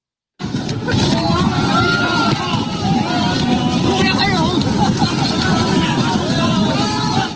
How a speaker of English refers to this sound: And so the clip that you're listening to right now is of people basically trying to get as many supplies as they possibly can.